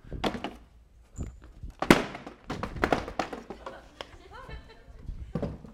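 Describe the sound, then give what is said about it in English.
A heavy podium is shoved and dragged, making a series of irregular, loud thumps and knocks over several seconds, with faint vocal sounds in between. “This is the heaviest podium known to mankind.”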